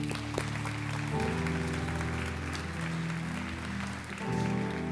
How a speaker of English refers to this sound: Will you just clap for just a second?